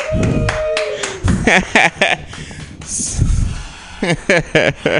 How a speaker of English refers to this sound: Yeah, thank you so much. That's crazy applause.